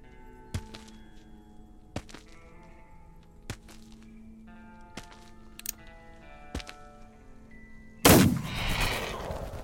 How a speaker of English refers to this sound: At the first gunshot, Jimmy jumps up into Chester like he expects you to catch him.